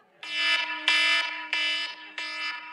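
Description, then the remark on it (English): A loud, harsh alarm buzzer, played as the 'most annoying sound in the world' from a car scene in an old movie, blares in four rapid bursts, each about half a second long with short gaps, over a faint steady hum. No one speaks. “You remember there's an old movie and there's a scene in the car where he's like, hey, do you want to hear the most annoying sound in the world?”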